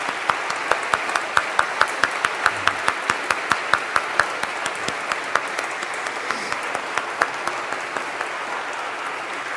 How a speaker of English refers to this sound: And if you are a family member of one of these folks sitting here in front of me this morning, would you now please stand up and let's have a hand of applause for you.